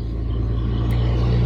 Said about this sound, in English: Excuse me, let that truck pass by.